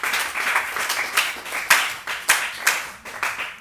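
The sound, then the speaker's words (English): A church audience claps their hands unto Jesus, with several sharp louder claps rising out of a steady, dense patter of many hands, lively with no talking. “Clap your hands unto Jesus.”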